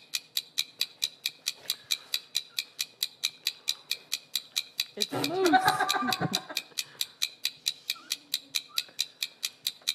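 A pressed penny machine is cranked, giving a steady, even ratcheting click about four times a second throughout, with a brief louder burst of sound midway through.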